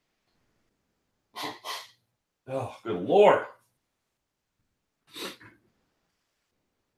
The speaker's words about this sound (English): Excuse me for just a second. I got to blow my nose.